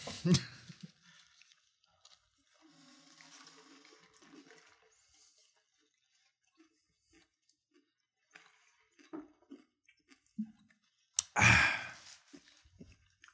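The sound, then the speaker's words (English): Crunching on a spicy fried chicken sandwich with pickle: scattered soft chewing and crackly bites with quiet gaps between, a noisy burst at the start, and one loud, rough crunch near the end. No one talks. “Man, boy, crunching.”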